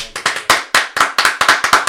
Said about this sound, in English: I gotta get a better applause.